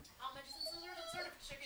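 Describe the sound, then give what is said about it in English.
A dog whimpers and whines in agitation, a string of thin, high-pitched cries that slide up and down in pitch almost without pause, fairly soft throughout. “My dog is going nuts.”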